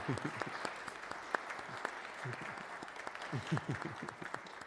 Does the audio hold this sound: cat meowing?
no